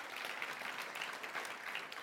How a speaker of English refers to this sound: You know that applause goes to God and what God can do in those moments.